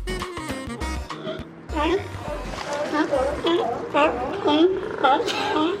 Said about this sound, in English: The belching, sneezing, coughing, and wheezing may sound like a bad cold, but the barking gives it away. These noisy mammals are California sea lions. Producer Mark Seth Lender made this recording at a floating pier outside Elkhorn Slough in Monterey